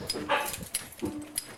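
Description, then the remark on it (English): A dog whimpers softly with a few short, high whines and a longer, lower whine, fairly quiet, with no one speaking. “Or the dog's doing it, one or the other.”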